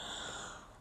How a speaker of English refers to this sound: Oh my gosh. Excuse me. That was a yawn. If you didn't know.